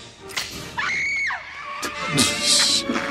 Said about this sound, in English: She screamed a little late, but okay, sure.